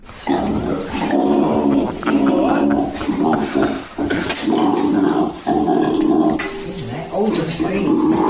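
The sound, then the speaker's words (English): A person loudly imitates a koala's growl, making rough, guttural snoring grunts in long continuous bursts broken by brief pauses. “You know what would have made that TikTok better is if koala leapt from the tree onto her face. And growled.”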